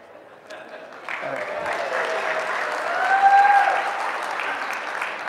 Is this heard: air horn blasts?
no